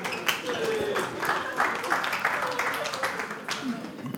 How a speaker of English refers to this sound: That's fine. Well done. I would leave you there a lot longer. But a ripple of applause. Well done.